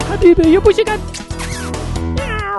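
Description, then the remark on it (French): A few short meows from a little cat in quick succession, fairly loud and mixed with a voice speaking over them. “Lama Beydoun, joyeux anniversaire avec ton petit chat.”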